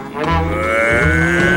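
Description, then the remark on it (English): A cow lets out one long, loud moo, a deep drawn-out bellow that holds steady for about a second and a half with no talking. “But also, there's probably good reason that we don't use cows as steeds.”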